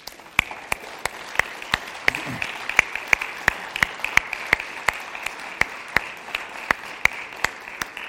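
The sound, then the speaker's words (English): An audience applauds steadily for several seconds to thank people standing at their seats for serving, a dense wash of many hands with a few sharp, evenly spaced claps standing out in a regular beat. No one speaks. “Would those people that I mentioned just stand up in your, would be willing to just stand up in your seat, and can we give you a round of applause and thank you for serving?”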